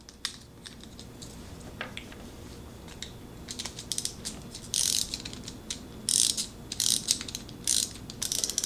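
A clockwork pencil sharpener being wound up: rapid ratcheting clicks come in short, uneven bursts that grow louder and busier toward the end, with no voices.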